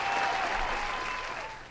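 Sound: round of applause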